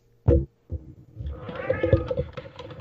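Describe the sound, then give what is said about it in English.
Pet cats fighting in an apartment: a sharp, short cry, a brief pause, then drawn-out, wavering yowls and meows over scraping and thumping. The sounds are fairly loud. “Looks like my cats are deciding to have their own Royal Rumble right now, if that's what you're sounded hearing.”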